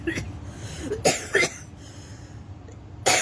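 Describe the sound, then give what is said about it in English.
Several sharp coughs, a quick pair near the middle and another at the end, each a harsh burst of breath separated by quiet pauses. “Like coughing.”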